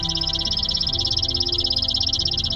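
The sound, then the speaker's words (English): A male chipping sparrow sings from a branch, responding to a recorded call played from an iPod through an external speaker: a rapid, dry, evenly pulsed trill of high chips that runs unbroken through the whole clip, over a steady low rumbling hum. “I dialed up the pre-programmed call on my iPod, broadcast the song through an external speaker, and bada bing, there it was, a male chipping sparrow, hormones pumping, singing madly from the branch in front of me.”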